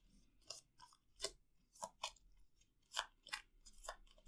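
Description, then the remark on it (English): A deck of playing cards for a card game being shuffled, with a series of crisp, papery snaps and rustles in an uneven rhythm, fairly quiet, with no one speaking. “Okay, they feel pretty shuffled.”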